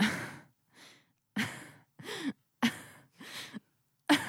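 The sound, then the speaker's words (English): A woman on a phone call gasps four times, sharp and breathy, in quick succession, each a short rush of air separated by brief pauses, fairly loud with no talking, before she hangs up. “She just gasped 4 times and hung up.”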